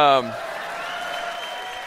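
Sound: audience applause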